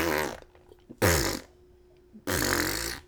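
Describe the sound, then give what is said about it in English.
Three loud fart-like blasts of expelled air, each a rough buzzing burst with pauses between; the last one drags on longest. No talking. The air was trapped during penetrative sex and is pushed back out. “And ladies and gentlemen, that is only farting if it has odor.”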